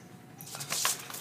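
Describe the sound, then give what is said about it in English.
A short burst of light clicking and rattling as dice are handed over and shaken, quiet and scattered over about a second with no voices. “Oh, you need dice, don't you? Yes. That is not the right one. Here, have dice.”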